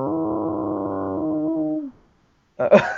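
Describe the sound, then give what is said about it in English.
A person makes a long, low, droning moan with a wavering pitch, imitating a whale call, then goes quiet before a brief, louder vocal burst. “I was making whale sounds.”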